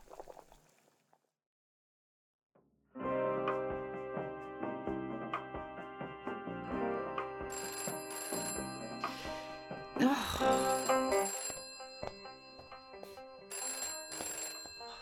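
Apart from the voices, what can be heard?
telephone ringing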